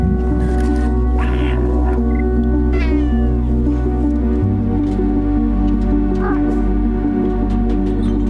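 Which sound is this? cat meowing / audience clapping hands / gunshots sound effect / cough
cat meowing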